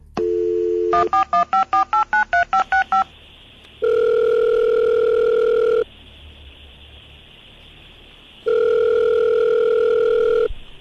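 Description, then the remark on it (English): A phone number is quickly keyed in, about ten rapid beeping tones, then two long, steady ringback tones sound with a pause between them, clear, with no one talking. “I didn't expect you to call me so soon.”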